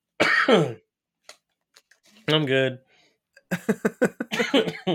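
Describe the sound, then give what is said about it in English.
A harsh cough opens, then a person says a couple of words before breaking into a loud fit of rapid, repeated coughs that runs to the end. The coughing is caused by drinking Ocean Spray cranberry juice. “Yep, that's what's making me cough.”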